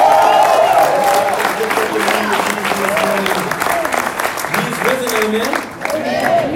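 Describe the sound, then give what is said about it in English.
An audience at an Easter Sunday service at Frontline Church applauds the worship team, with scattered cheers and whoops rising above the dense, continuous clapping, loud throughout with a brief dip near the end before swelling again. “This is give our worship team a round of applause.”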